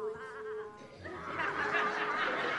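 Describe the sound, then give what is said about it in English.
Several children imitate sheep, one wavering bleat first, then a jumble of overlapping, quivering baa sounds from a group, fairly loud, with a hint of giggling mixed in. “Over here, we're going to have the sheep. You guys are sheep. Let me hear your best sheep noise.”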